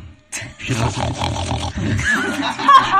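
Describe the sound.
A person does a loud, raspy pig-snorting impression, a rough guttural growl that runs almost without pause for a few seconds.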